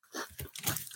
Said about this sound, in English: And what you hear is us eating Flamin' Hot Cheetos, because why not?